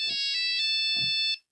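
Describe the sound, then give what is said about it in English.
The bright, electronic Nokia mobile phone ringtone plays a short melodic phrase of rapid tonal notes, loud, with no talking over it, ending abruptly after about a second and a half. “This is it. The Nokia tone.”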